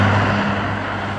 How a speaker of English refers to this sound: A car thrashes past me before I can take the next step. I back up, watch it go, then turn back to watch for more cars.